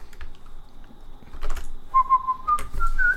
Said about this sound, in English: That's not a hint, by the way. Me whistling the Popeye song.